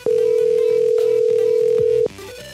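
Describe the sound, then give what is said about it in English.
A steady, loud telephone tone holds for about two seconds while someone redials, then cuts off abruptly, leaving quieter background sound with faint music-like tones underneath. “I'm just going to keep calling him.”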